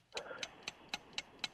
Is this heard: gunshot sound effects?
no